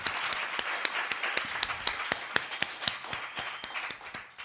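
An audience applauds steadily, many hands clapping in a dense, irregular patter with sharp individual claps popping out, sustained at a fairly even level throughout with no talking.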